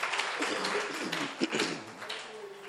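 An audience claps together for a pastor, a dense, steady patter of many hands that holds at an even, moderate loudness for a few seconds, with a faint murmur of voices mixed in.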